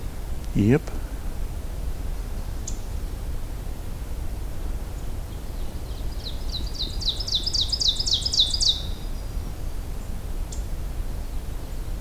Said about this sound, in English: Couple of vocalizing birds here. High pitched. I feel like this is probably ovenbird.